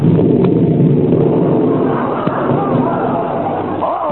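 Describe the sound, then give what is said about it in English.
A deep, steady rumble of thunder rolls on for several seconds, dense in the low end and never fading, with a faint murmur of voices creeping in near the end. “Oh, my goodness, don't tell me it's going to rain now.”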